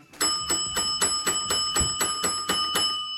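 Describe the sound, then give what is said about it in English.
A bell rings rapidly and steadily, about eleven bright metallic strikes in quick succession, each blending into a sustained shimmering tone. Loud, with no voices. “Your bell today, huh?”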